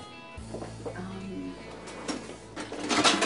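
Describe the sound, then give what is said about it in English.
Pots and pans clank and scrape a few times, the clatter growing louder toward the end, over a steady low hum. “And the pots and the pans.”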